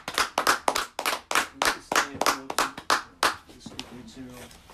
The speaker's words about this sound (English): Clap it up for that, man.